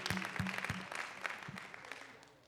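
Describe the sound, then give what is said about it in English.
An audience gives God a hand clap of praise, a dense wash of many overlapping claps with sharp individual strikes, gradually thinning and fading toward the end. “One more time, can we just give God a hand clap of praise?”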